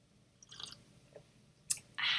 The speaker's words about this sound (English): There just might be some pauses and you'll hear a little gulp, and it maybe will make you want to go and make some tea, which you should, by the way.